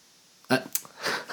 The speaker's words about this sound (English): You made me cough.